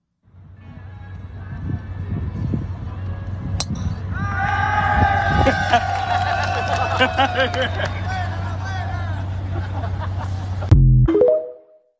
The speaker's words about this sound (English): And they're sitting there bored, cheering the golfers 30 yards away, teeing off. Here it is.